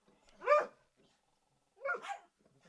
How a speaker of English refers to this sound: There's a cat that's camped out on my porch. So that's the rumpus over here. Apparently these dogs have never seen a cat before.